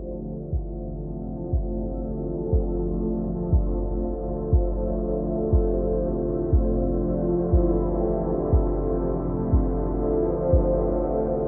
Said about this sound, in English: So what they did is they worked with scientists to create a song that is intentionally relaxing to the listener.